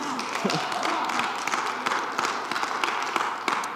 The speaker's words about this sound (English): Go ahead and clap.